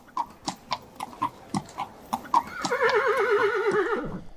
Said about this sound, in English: Todd showed up in a horse-drawn carriage